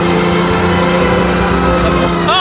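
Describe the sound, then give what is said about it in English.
A $100 million car's powerful engine roars steadily past on a bridge with a loud, buzzing harmonic drone, its pitch climbing sharply in a quick rev right at the end. “$100 million barreling down the street.”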